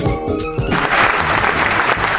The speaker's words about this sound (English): There's the applause from the arena right there. I love that sound because it really sounds like the Gladiator Arena.